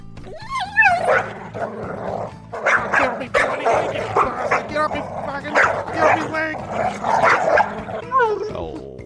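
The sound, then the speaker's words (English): A dog, Rover, barks and yips over and over in a rapid, excited stream, loud, with a few whimpering notes mixed in and hardly any pause for about nine seconds. “He's a bloody dog.”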